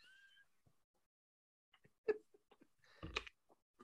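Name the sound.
lip smacking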